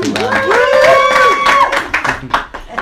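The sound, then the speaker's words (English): A short burst of audience applause, scattered claps pattering for a few seconds while a voice rises and holds a sustained tone over the clapping before it thins out. “I don't often get applause in this sentence.”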